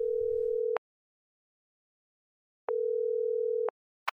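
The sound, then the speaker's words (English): A telephone ringback tone after dialing on a cell phone: two steady, mid-pitched beeps of about a second each, separated by a long silent gap, clear, with a brief click at the end. “Humpty Dumpty pulled his cell phone out of his pocket and dialed”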